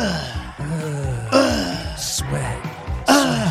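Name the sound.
imitated heavy breathing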